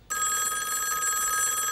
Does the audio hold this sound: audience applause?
no